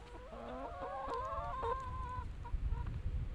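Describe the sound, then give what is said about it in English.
Several egg-laying chickens cluck and squawk together in a busy, overlapping burst of harmonic calls, with low rumbling background noise and a few short clucks trailing off at the end. “So thank you chickens for our eggs.”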